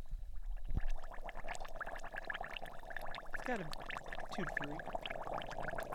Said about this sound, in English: Oh, you hear that sizzle? That's stew, guys. Bubbly, bubbly. We're boiling.